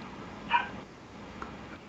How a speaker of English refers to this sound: Excuse me, there may be a dog barking in the background.